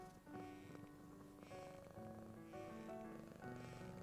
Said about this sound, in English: It is a known fact that the sound of the purring can lower your heart rate, lower your blood pressure, reduce anxiety, and put you in a state of total relaxation.